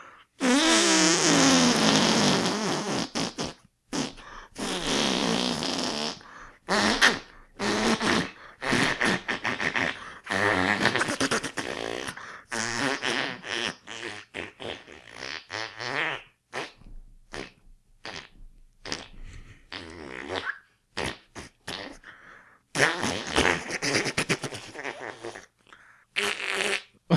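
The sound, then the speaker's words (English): A voice blows a long, loud fart-like raspberry, sputtering on in repeated bursts with brief breaths between, stretching for nearly half a minute with no talking. “But I'm going for 69 minutes and 69 seconds, even if I have to put in a big long fart at the end like this.”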